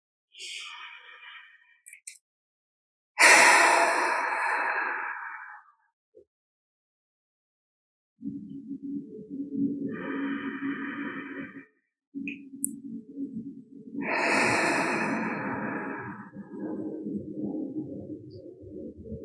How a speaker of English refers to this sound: And again, taking a few deep breaths on your own just to settle the body and the mind.